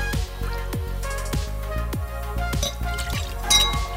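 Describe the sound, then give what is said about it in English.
Rye whiskey (Devil's River Rye) glugs steadily from a bottle into a mixing glass, 2 ounces poured in a series of rhythmic gurgling pours with faint glassy clinks, over continuous background music. “So we'll start out with a mixing glass. 2 ounces of Devil's River Rye goes into that.”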